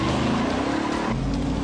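car tires skidding

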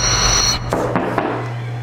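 knocking

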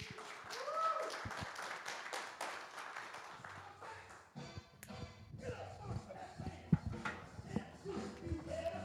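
audience hand clapping

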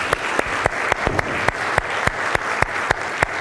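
audience round of applause

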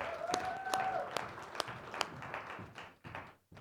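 round of applause

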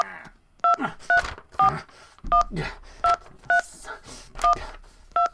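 telephone keypad dialing tones

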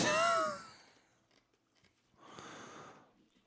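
chewing on ice

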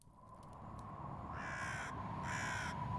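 raven cawing

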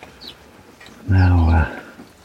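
hen clucking

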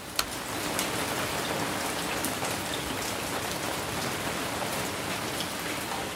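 rain falling on surfaces

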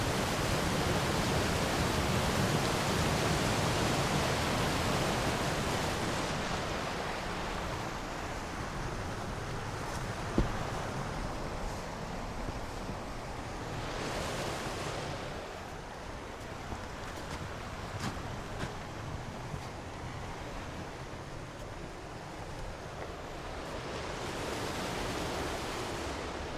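river water flowing

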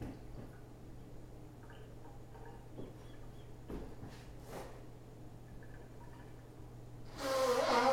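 man blowing his nose

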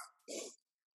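dog barking

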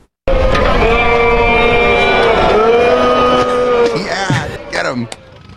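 crowd booing

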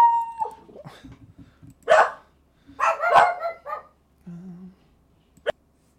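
several dogs barking

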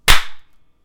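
hand clap

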